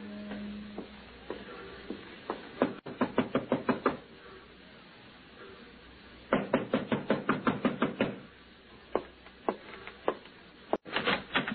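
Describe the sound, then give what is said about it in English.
Loud, rapid knocking on a wooden door comes in several insistent bursts of sharp raps, separated by short pauses, with no voices. “It was ambulance time, 6 o'clock, when I heard him on the stairway outside my door.”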